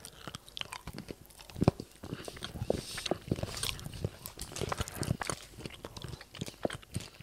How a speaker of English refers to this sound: All right, we're just going to taste this. So for anyone who's on audio only, we are now chewing.